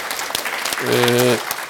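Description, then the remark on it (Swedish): Scattered hand clapping in loose, uneven bursts, with a brief voiced sound rising over the claps in the middle before the applause carries on alone. “Och det där, ja vad bra, jag applåderar gärna.”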